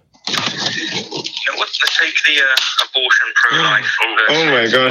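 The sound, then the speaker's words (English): Tinny, phone-quality voices overlap continuously as a caller in Canada has a radio playing the broadcast back into the call line, creating a layered, echoing, delayed jumble of talk throughout. “Yeah, you need to turn down and off whatever you're listening to. Hey guys, we're gonna get an echo.”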